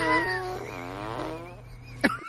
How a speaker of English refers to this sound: That was the actual fart.